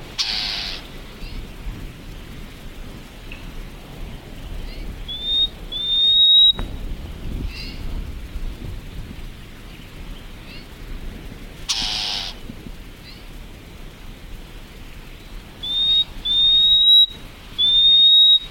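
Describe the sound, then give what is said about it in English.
A scrub robin calls in the open, mixing harsh buzzing chirrs and rattles with short rising whistled notes, repeated a few times over a low rumble of wind or noise. “So as soon as you get anywhere near it, it chirs and rattles at you.”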